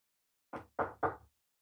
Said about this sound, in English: Got to knock on some wood there.